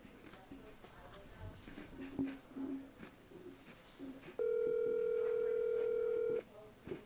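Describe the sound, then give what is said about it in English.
A loud, steady electronic phone tone sounds once for about two seconds, as a call to a friend rings unanswered, after a stretch of muffled voices and room noise. “He ignored me. His phone wasn't dead.”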